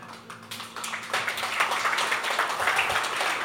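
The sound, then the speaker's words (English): Soft, polite applause from a church audience, a thin patter of scattered light claps that swells slightly and holds steady for a few seconds without cheering or voices. “That sounded like a golf clap.”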